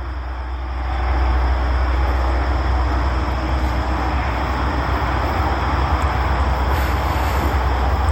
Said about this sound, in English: The road's busy this morning. Cars driving up and down.